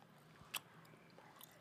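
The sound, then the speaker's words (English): A sharp bite into a hard, chewy Hi-Chew candy, followed by a few faint, soft chewing sounds. The mouth noises are quiet against a low background, with no talking. “It's just the texture is hard as fuck. So I was just chewing gum. So like I was like chewed into it.”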